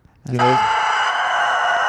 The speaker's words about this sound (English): Is that the dog that fronts that metal band? No, that's a rooster.